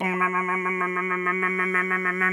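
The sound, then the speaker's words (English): A voice imitates a UFO drilling into the earth of a potato field with a steady, low buzzing drone that pulses in a fast, rattling rhythm for a couple of seconds, holding one pitch throughout. “And dirt is spraying in every direction. It's drilling into the earth.”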